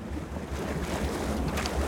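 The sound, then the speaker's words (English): Steady outdoor wind rumble with soft lapping water around a small boat anchored in the south end of Lake Tahoe, California, on a cool fall evening, a continuous low, even wash of sound with no voices, moderately loud. “standing at the back of a small boat anchored in the south end of the clear blue lake”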